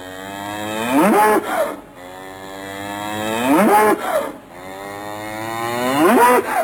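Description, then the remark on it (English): An old cow moos loudly, three long drawn-out calls in a row with short pauses between them, each rising and bending in pitch, with no other sounds around. “Mother, rejoice, I found the fairy gold, and now our dear old cow need not be sold.”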